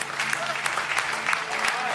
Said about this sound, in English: Happy Mother's Day. In fact, we want to honor all the moms today. Why don't you guys stand together? All the moms, you guys stand. We want to honor you. Come on, let's give them a hand clap.